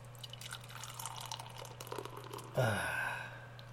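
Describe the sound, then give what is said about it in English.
Light beer pours into a glass: soft fizzing and trickling at first, then a sudden gush of liquid with a rising tone as the glass fills, over a steady low hum. “And Le Pour.”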